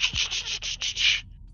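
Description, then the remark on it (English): A pencil rubs quickly back and forth across a sheet of a notepad, to reveal indentations left by writing on the page above, in about seven scratchy, hissing strokes, fairly loud and steady, then stops abruptly. No one speaks. “I take a pencil and I go.”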